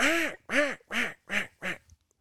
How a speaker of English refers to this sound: And I mean, that's just not how ducks make noise. Yeah. Ducks make 5 and 7 note quacks, you know.